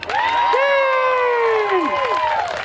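An audience cheers loudly for nearly three seconds, with long sustained whoops sliding downward in pitch over a steady wash of crowd noise and some scattered clapping.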